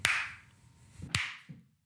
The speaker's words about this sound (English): Do me a favor and don't sync clap midway through the thing